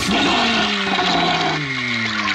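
A toilet flushes loudly, a steady rush of water with a gurgling, swirling tone that drops in pitch as it drains, filling the whole couple of seconds.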